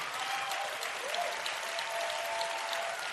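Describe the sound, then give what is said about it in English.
Steady applause from a church audience as a show of honor for their founder and pastor. It is a dense wash of many hands clapping at an even, moderate level throughout, with no voices standing out. “It's a good idea to clap and to... It's also a show of honor.”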